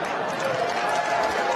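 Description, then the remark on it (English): A debate audience boos in reaction to a remark by Ted Cruz, a thick, continuous wash of many low voices held at a steady, loud level for the full second and a half, with no single speaker standing out. “You heard the booing from the audience, Dr.”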